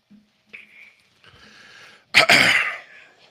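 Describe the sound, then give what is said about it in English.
A breathy inhale leads into a sudden, loud, raspy cough burst that trails into rough throat clearing, with no talking. “I got a terrible cough.”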